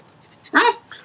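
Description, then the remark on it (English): A single loud dog bark, short and sharp with a slight whiny edge, with a faint steady hum in the background. “I couldn't have said it better myself. Good dog.”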